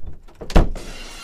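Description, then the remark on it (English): A sudden loud crash like shattering glass, the opening of Stone Cold's entrance music, bursts out after a couple of soft taps, then trails into a bright, sustained hiss of scattering shards with no voices. “Anytime I enter a room, you know what happened? Stone Cold music plays, babe.”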